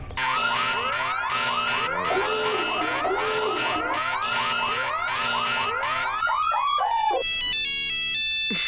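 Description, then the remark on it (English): A loud electronic Black Friday alarm jingle, the cue for a radio call-in contest, plays alone, with rapid repeating rising chirps and pulsing bursts like a car alarm, ending in a few wobbling siren-like warbles. “And this is what the aforementioned alarm sounds like.”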